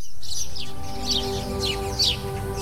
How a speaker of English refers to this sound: Birds are chirping harmlessly, and the soundtrack evokes a peaceful, even melancholy tranquility